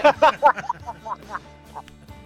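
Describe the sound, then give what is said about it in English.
A person imitates a clucking chicken, firing off a quick run of loud, squawky bursts that grow softer and more spaced out as the impression trails away. “And, you know, I just like to hear that chicken line one more time.”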